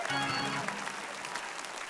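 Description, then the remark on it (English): A crowd claps steadily, a dense patter of many hands at an even loudness, with a brief tonal voice or music at the start fading under the applause. “Go ahead and clap, even if you don't understand it.”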